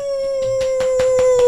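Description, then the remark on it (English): A long, steady wolf howl holds one pitch, loud, while soft rhythmic thumps of a thumping heart pulse underneath at an even, quick beat. “Oh, and also he's the wolf howling.”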